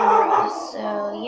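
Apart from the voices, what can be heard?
dogs barking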